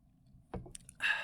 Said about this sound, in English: Let me take a sip of this beer.